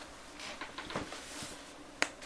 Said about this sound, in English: The old wifey next door putting her bins out and being as loud as possible.